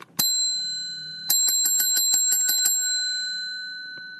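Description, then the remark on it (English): A single bright ding of a bell, then a quick rapid trill of repeated rings, with the metallic tone hanging and slowly fading afterward. Clear, with no voices. “Well, let's just ring the bell and be done with it.”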